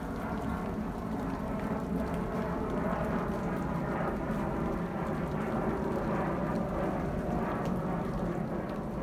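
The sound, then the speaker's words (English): Steady, heavy rain hisses throughout, layered over a deep, continuous roar of a jet aircraft engine droning, with no clear rise or fade and no voices. “Jet in the rain.”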